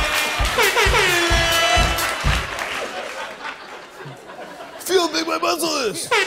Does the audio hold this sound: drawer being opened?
no